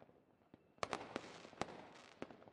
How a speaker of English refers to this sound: The fireworks burst in the distance, showing an array of blues and greens and reds.